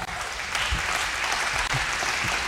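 A crowd applauds steadily for a newly married couple who are present, with dense, continuous clapping that holds an even loudness for the whole stretch and has no voices over it.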